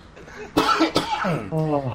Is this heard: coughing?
yes